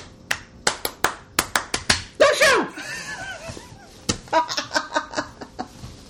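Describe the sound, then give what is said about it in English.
Sharp hand claps, demonstrating eerie claps heard out of silence, sound in an uneven, scattered series of about fifteen, broken midway by a brief burst of laughter or vocal noise before the clapping resumes. “And the weird part is that the claps are like, it's like you just kind of hear silence and you hear...”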